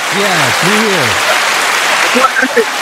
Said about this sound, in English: So you need to throw a couple claps in there, you know what I'm saying? You know, get you back now. You know what I'm saying? We got the soundboard back, you know what I'm saying?